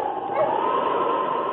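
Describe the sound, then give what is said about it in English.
A team of husky sled dogs being urged to mush yips, whines and barks together in a steady, overlapping chorus, fairly loud with no pauses. “Mush your huskies!”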